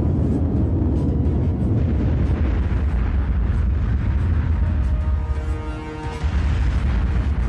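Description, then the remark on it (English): In a US government test, a jet bolted to a track and doing 500 miles an hour slams into a nuclear power station-style concrete wall, atomizing on impact, with a thunderous, sustained roar and rumble that stays loud throughout, briefly dipping before a whining tone rises and the roar returns. “The plane atomized with the impact.”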